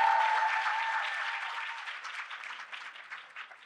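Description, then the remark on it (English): A morning crowd at the Woman of Color event claps together in sustained applause, loud at first and gradually thinning and fading over a few seconds, with faint cheering mixed in early on. “So let me hear your hands clapping if you're having a fabulous time at the Woman of Color.”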